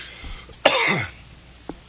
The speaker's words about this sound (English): That was so professional. Cough right into the microphone.